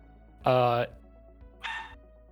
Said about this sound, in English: Did y'all hear that bark?